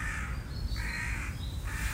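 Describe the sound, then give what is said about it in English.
A crow caws three times in steady succession, harsh and raspy, over a low outdoor rumble, clear with no one talking. “No respect, these birds. Sorry. Could you be quiet, please?”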